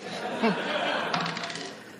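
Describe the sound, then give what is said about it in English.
A die, rolled by a volunteer for a speaker, clatters across a hard surface in a quick burst of bouncing clicks that quicken and fade, with a brief murmur of voices and light laughter. “But for the other 2, let's go ahead and roll this dice.”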